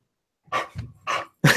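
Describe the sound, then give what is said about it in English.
A dog named Lily barks excitedly in three quick, loud bursts, with no talking during the barks. “Your dog is harassing me. Yeah, she's just getting all excited about everything.”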